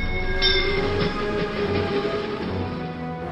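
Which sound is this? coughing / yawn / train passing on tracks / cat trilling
train passing on tracks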